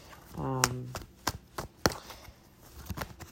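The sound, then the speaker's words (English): A small, smoothly shuffling travel deck of tarot cards being shuffled, heard as sharp, irregular papery slaps and clicks spaced about half a second apart, with a brief hummed voice early on. “So with that in mind, I'm shuffling my little travel deck that I've been using for a couple clients while I've been here in the city.”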